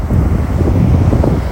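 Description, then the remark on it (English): Water sloshes and splashes against the speaker's feet in California on a beautiful day, a steady, low, rumbling wash mixed with heavy wind buffeting on the microphone; no one speaks. “If you hear that, that's the water hitting my feet again.”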